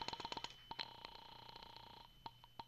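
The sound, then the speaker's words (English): A telephone is dialed to call the landlady at the Carlton Apartments: bursts of quick clicks and short beeps over a steady hum, then a few more scattered clicks near the end. No one speaks. “All right. I'll phone the landlady.”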